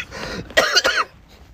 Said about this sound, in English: Why am I coughing so much?